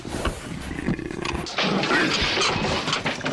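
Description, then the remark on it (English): A leopard that has escaped from the zoo growls in low, rasping bursts; the rumbling grows louder and rougher after a brief pause, then continues in a steady, throaty snarl with no voices present. “We're live from the zoo where a leopard has escaped.”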